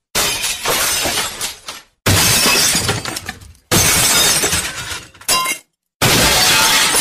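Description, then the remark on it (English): Someone smashes in through a window, the glass shattering loudly several times in a row, each crash a bright, crackling burst of shattering shards that tapers off before the next impact, with brief silent gaps between. “Sounded like somebody smashed something. Oh, look, it's George. He smashed in through the window.”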